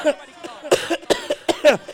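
Several coughs in quick succession, harsh bursts spaced irregularly through the moment, loud, with some vocal sound in between.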